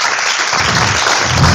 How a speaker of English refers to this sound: And this is happening in Newark and Sherwood, so we should all be so proud of these two youngsters. Ladies and gentlemen, please give them a round of applause.